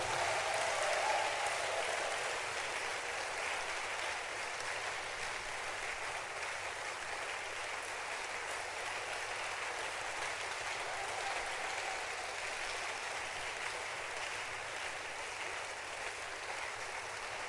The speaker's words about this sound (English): Give another hand clap unto Jesus and to the Lord and to the Lord. Keep clapping.